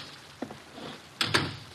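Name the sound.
door opening and closing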